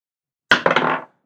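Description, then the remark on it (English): Dice clatter across a table during a tabletop role-playing game, rolled for a history check: a sharp first knock, two quick follow-up clicks, then a bright rattling tumble that settles after about half a second. No voices. “What the butts with these dice?”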